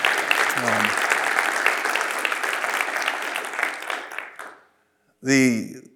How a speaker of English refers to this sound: He's our director of schools. And just a little tidbit. Yeah, give him a hand clap. We thank God for him.